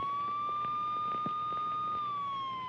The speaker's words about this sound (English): As is the procedure, before jailed, Pizza McCorrell was handcuffed, stuffed in a police car, paraded around town with sirens blaring, fingerprinted, photographed, and searched